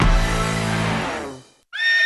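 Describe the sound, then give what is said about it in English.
A horse neighs loudly, a long harmonic whinny that fades out, followed after a brief pause by a second, higher-pitched whinny. “The ARL Second Chance Ranch is a safe haven for horses rescued from abuse, neglect, and abandonment.”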